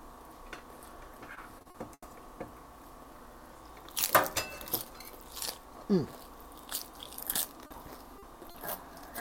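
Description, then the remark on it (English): Crunchy chewing of chicken, a series of sharp, crackly bites and munches that start a few seconds in and repeat irregularly over a low, steady background hum. “If you keep eating it, there's going to be none left to go with your tater tots.”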